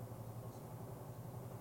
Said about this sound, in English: It's a helicopter. I'm sorry, y'all. I just kind of phased. I was just like, is the rapture getting ready to happen? I was like, you know, that little loud sound. I'm sorry. I was just like, what in the world?